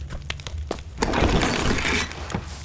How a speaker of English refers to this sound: And a small chest. With a hard kick, Hero cracks the weak lock of this chest as dust fills the air.